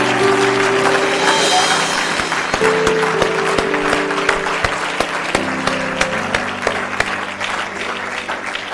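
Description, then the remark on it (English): A church audience applauds, giving the Lord a hand clap, steadily for several seconds, a dense wash of many hands clapping with sharp individual claps standing out, while a low sustained organ-like tone sounds underneath. “Now, let's give the Lord a big hand clap this morning.”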